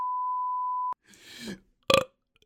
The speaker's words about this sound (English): That was spicy. Yeah. I don't know why I burped right into my mic and now I've got to sit.